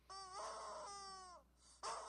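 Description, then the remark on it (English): A rubber chicken from a short online video lets out a long, strained, wheezing squawk, falls quiet briefly, then starts squawking again. The sound is loud and there's no talking. “That is a rubber chicken.”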